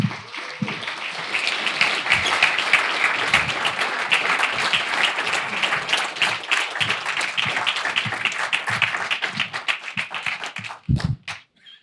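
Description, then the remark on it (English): An audience applauds steadily for about ten seconds as guests of a program walk in, a dense patter of many hands clapping at once, then the clapping thins out and tapers off to a few last claps. “I know it's a long walk, so the applause, it's fine.”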